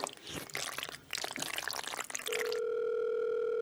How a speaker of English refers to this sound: I'm now going to phone them using my brand new and extremely sticky phone. Oh my God, it feels so naughty on my fingertips.